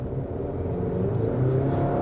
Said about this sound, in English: you know, the sound of this truck is not like... what I would determine to be trucky.